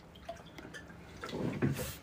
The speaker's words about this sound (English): Look at that pour. Look at that pour. No color whatsoever. Not blue.